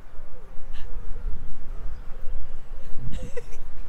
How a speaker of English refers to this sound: We found one in the distance. I bet it's going to stop as soon as we get there. So how do you know that's called a wood pigeon? Because it's going, I don't want to go.